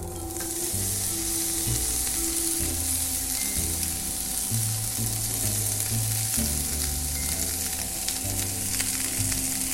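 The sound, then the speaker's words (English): A pound of mushrooms, spread across a pan of hot oil, fries with a steady, dense sizzling hiss and crackle that runs the whole time, over low, melodic background music. No one speaks. “And then I'm gonna spread all the mushrooms across the pan.”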